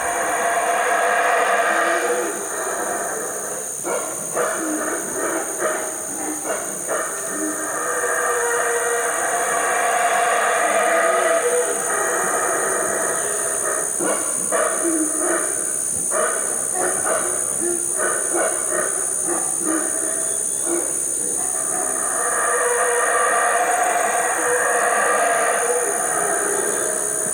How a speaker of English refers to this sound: Ferocious roar, that is actually a very cute little monkey making that sound. These are the howler monkeys, right?